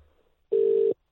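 A telephone line tone sounds as an outgoing call to a guest is placed during a live show: one loud, steady beep lasting under half a second after a quiet moment, with the next tone just starting at the end.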